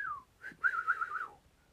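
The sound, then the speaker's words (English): A person whistles: a short falling note, a quick chirp, then a longer wavering tone that slides down at the end. No one speaks. “I whistled today going down the steps with Lil M, and she thought it was the funniest thing ever.”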